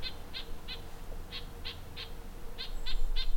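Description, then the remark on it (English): A bird in a tree gives a run of about nine short, high-pitched calls in a quick, steady rhythm near another bird in distress, with a low rumbling background and no talking. “a bird in distress, and so the other birds are curious.”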